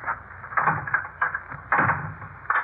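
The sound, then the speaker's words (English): A wooden door is pushed shut, followed by a series of clunks and rattles as the lock is worked, with no voices. “I'd better lock the door in any event.”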